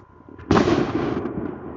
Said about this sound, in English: They letting off these fireworks. That shit scared the shit out of me.